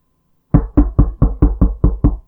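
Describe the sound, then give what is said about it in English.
Eight loud, heavy, booming knocks on an apartment front door in a quick, steady rhythm, after a brief moment of silence, with no voices. “It's polite to knock.”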